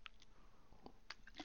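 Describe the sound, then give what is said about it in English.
Quiet mouth sounds of someone sipping water: a few soft wet slurps and a swallow, spaced irregularly with no talking. “Pardon me. Sip of water.”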